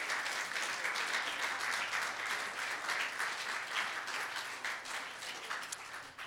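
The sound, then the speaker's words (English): A church audience claps steadily for several seconds to welcome people to the family of God, a dense, sustained wash of applause with no clear individual beats, holding loud throughout and easing slightly at the end. “Would you give the biggest clap offering you've ever given and just say, welcome to the family of God?”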